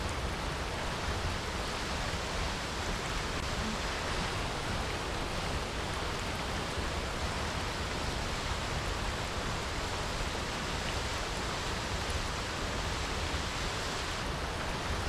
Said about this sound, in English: There are people swimming at the bottom of the waterfall.